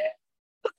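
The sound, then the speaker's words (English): A quick, stifled sneeze, two short bursts separated by a brief pause, fairly soft and over in under a second with no talking around it. “Sorry. Bless you.”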